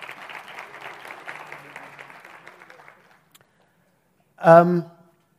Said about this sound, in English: So can I ask you to give yourself a wonderful round of applause as well.